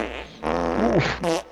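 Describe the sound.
A voice blows a wet, buzzing raspberry imitating a small, tight fart, a short sputtering burst that rises and wobbles in pitch before ending in a brief squeaky flourish.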